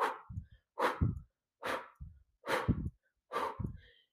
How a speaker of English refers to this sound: So you breathe in and exhale. So just breathe out. And when you're doing that, think of contracting your abdominals, like squeezing in your abs to breathe out, to push that air out.